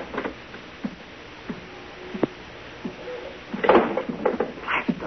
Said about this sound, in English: Now the clouds were beginning to lift, and at the same time, the door opened in the suite and the silhouetted figure of a man entered the room.